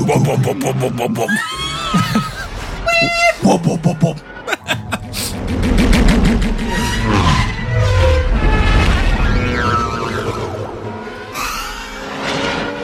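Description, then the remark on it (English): Podracer engines roar and whine in a fast, layered race sequence, with sweeping pitch changes, rapid pulsing bursts, and a loud, continuous mechanical drone throughout. “His does have the coolest sound effect.”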